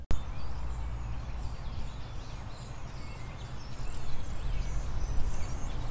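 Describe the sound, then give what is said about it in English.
A large flock of about 100 wild parrots that live in a neighborhood squawks and chatters together in a nearby tree, a dense, continuous din of overlapping harsh calls that swells a little louder toward the end, with no talking. “There's about 100 wild parrots that live in my neighborhood. Right now, they all seem to be in a tree near me.”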